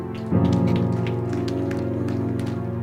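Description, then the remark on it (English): A crowd claps for the Lord Jesus, a steady, dense patter of many hands, over sustained keyboard or organ chords that swell in at the start and hold throughout. No one speaks. “Clap for the Lord Jesus.”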